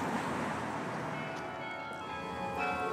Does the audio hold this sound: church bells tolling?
yes